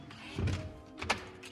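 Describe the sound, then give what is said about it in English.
In a large room filled with straw, the king shuts the door with a low, heavy bump, and about half a second later a short, sharp click follows as he locks it before leaving. No one speaks. “He then locked the door and left.”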